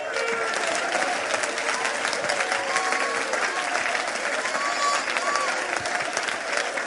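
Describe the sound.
During preaching, a crowd claps their hands to God steadily for several seconds, a dense, even wash of many hands with a few faint voices and brief tonal calls rising above it.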